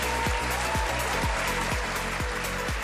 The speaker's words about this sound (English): Big round of applause.